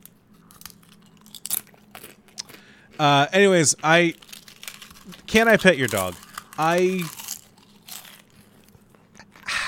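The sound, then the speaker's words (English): Crisp crunching and scattered wrapper crinkles, someone snacking with short irregular bursts of crackle, running faintly beneath a few spoken phrases and in the pauses between them. “You should be able to eat while podcasting.”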